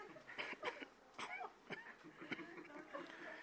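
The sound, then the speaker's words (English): A series of short, dry coughs and throat-clearing bursts, several in quick succession at uneven intervals, moderately loud, with no talking. “I'm like, here, I got to cough.”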